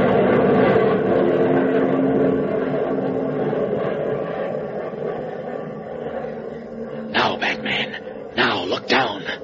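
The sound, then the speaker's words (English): A loud, steady airplane engine drone as a plane passes directly over a mill, slowly fading as the plane flies away, followed by a few short bursts of voice near the end. “Oh, the plane's going away”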